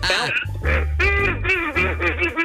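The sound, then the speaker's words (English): A duck call blown in several loud, nasal quacking bursts by a man in Apopka, with a low droning buzz beneath the honks. “It's my duck whistle. First of all, you're blowing it wrong, and it's called the duck call”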